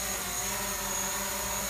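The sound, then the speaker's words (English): A drone whirs steadily and loudly, its buzzing rotors holding a constant droning pitch with a high whine on top, no voices, no breaks. “Sorry, I couldn't hear you over the sound of my drone flying.”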